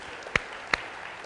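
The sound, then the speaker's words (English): An audience at Reality Ventura church applauding the people standing who came to its first Sunday gathering ten years ago: a steady wash of many hands clapping at a moderate level, with two sharp, louder claps standing out about a third of a second apart. “Come on, that's something to clap about.”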